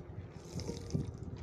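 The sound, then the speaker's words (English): Someone drinking water, with soft wet sipping and a couple of quiet gulps over a second or so, no talking. “I had to drink my water on it because today has been a tiring day.”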